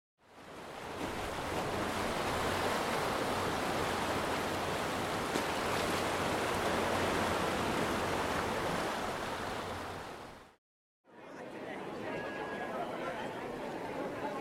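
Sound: waves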